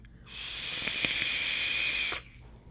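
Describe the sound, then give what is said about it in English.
A steady, airy hiss from a single-coil RTA vape device with a drip tip during an inhale, lasting about two seconds before cutting off abruptly, with a few faint crackles. No one speaks. “It's giving me nice warm vapor into my mouth hole.”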